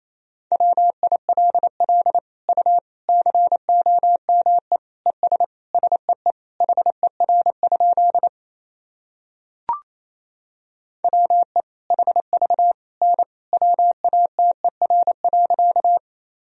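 Rapid Morse code beeps at 28 words per minute sending practice sentences from the top 100 words and abbreviations, in a steady mid-pitched tone, short dots and dashes running quickly in bursts with brief gaps, a single soft click in a pause midway, then more fast keying.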